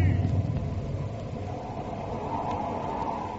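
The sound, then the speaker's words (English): A deep rumble of thunder rolls at the start, then fades into a steady, loud hiss of heavy rain that continues without a break. “And there's a storm, Jonathan! A storm's breaking! And it's raining!”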